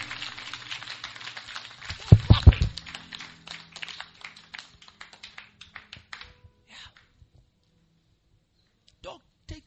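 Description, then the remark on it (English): An audience claps hands in a dense, irregular burst of many overlapping claps. A few loud claps stand out early, then the applause thins out and fades, with a brief final clap near the end. “You can clap your hands. Is it possible you can clap?”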